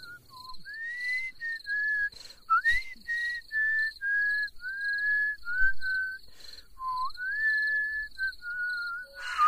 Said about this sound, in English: He's whistling Christmas carols in October.